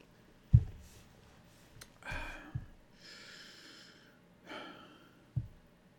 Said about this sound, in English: I'll take a sip of my water.